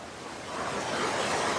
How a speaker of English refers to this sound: It's pouring down on us here. And you can see this fast rising rushing creek behind me. It goes right through downtown Santa Barbara. And there's concern that it could overflow and flood